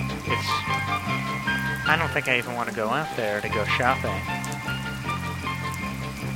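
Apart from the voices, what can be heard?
heavy pouring rain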